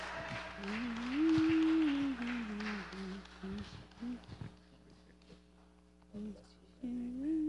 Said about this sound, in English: Somebody clap for Jesus.